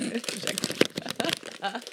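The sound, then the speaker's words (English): A snack bag crinkles and rustles loudly and continuously, with sharp crackling bursts as it is handled and opened, while voices talk over it. “You have to open it with scissors. Everyone knows that.”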